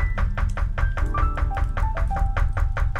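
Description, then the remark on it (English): Rapid, steady knocking on a door, a dozen or more sharp raps in an even rhythm, fairly loud, over a low rumbling background with faint tonal sounds. “Go get the door.”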